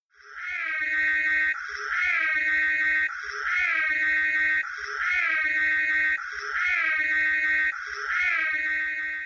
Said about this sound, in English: Oh hey, I love that sound. No other car has that particular siren wail. In Ghostbusters Ultimate Visual History, the sound engineer Richard Beggs revealed that its starting point really is a leopard. It's a leopard growling, reversed